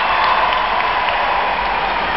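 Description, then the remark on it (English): Dense, steady clapping fills the whole stretch like a crowd applauding, with dull low thumps of stomping feet underneath. No one speaks, and the noise stays loud and even from start to finish. “Clap your fucking hands and stomp your motherfucking feet, man.”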